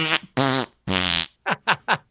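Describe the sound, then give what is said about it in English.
Someone blows loud raspberry fart noises with their mouth: a few longer buzzy blasts followed by three quick, short sputters, with no talking. “Was that a fart noise? That was a fart noise.”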